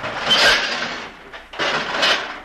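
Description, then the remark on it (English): A heavy stove is dragged across the floor, moved away from a studio door, in two long, loud grinding scrapes, broken by a brief pause, with no voices. “Then the stove.”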